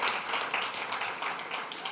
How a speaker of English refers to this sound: That is good. That is a not stressful clap. That means everybody's got all their shopping done.